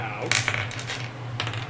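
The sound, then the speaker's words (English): Dice clatter and skitter across a hard table surface in a quick series of sharp clicks, with a steady low hum underneath. “You need to switch out them dice.”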